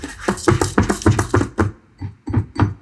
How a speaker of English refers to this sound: There's like a sound of something scratching at the porcelain behind the curtain.